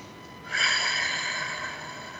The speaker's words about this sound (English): Those of you who are able to, though, let's put both feet on the floor and take another breath in through the nose, out through the mouth like through a straw.